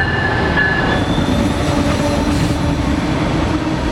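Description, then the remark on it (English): Amtrak's Empire Builder passenger train rumbles steadily along the rails, loud, with a dense low roar and a thin metallic wheel squeal rising briefly over the din. “Amtrak's Empire Builder first served customers in 1929 as the flagship train of the Great Northern Railway.”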